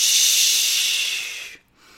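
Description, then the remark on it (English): A long, steady hissing breath pushed out through the teeth during a vocal warm-up, fairly loud, stops abruptly near the end, then a softer exhale starts again. “So right now, I am rolling my shoulders, getting my body warmed up, breathing in low and deep.”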